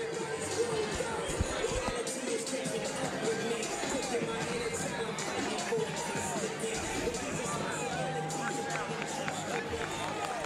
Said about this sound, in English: So now the crowd's really getting into it now. They want to win for their injury.